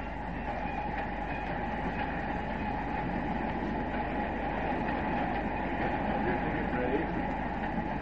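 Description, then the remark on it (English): A passenger train rolling along the rails just after crossing into Canada by way of Niagara Falls: a steady, dense rumble that holds an even loudness for about eight seconds, with a low mechanical roar and faint rattling textures throughout. “A scene on a train just after crossing into Canada by way of Niagara Falls.”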